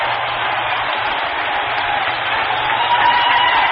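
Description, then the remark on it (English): A baseball stadium crowd yells and cheers as the tying run scores and ties the game 11-11, in one dense, unbroken roar, loud and steady throughout, swelling slightly near the end, with no voice standing out above it. “Boy, did you ever hear more yelling around here?”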